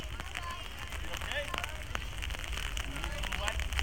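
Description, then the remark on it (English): Steady rain patters down, a dense continuous hiss broken by scattered sharper drips and taps on a hard surface, holding an even loudness throughout. “Oh my word. Raining again.”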